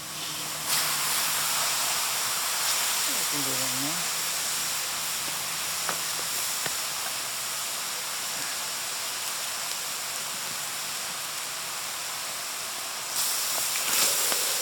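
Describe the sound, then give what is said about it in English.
A loud, steady steam hiss rushes continuously for about twelve seconds as rocks heated in a fire for about an hour sizzle in water in a bowl for cooking, with faint bubbling and a brief low gurgle partway through before it cuts off. “pours some water into the bowl, and then, very carefully, adds the rocks from the fire.”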